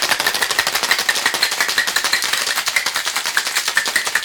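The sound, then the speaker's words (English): A lidded cocktail shaker holding ice, fresh lime juice, white creme de menthe and bitters is shaken hard and fast, ice rattling in a steady, rapid rhythm of bright, crisp clatters that keeps going without a break and with no voices over it. “Put your lid on your cocktail shaker and give it a good shaky, shake, shake.”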